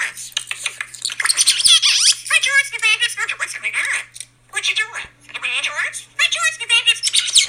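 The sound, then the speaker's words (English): A bird squawks and chatters in bursts, its harsh, warbling calls mimicking the rhythm of human talk, with a short pause before the chatter resumes over a faint steady hum. “the bird started mimicking their talk”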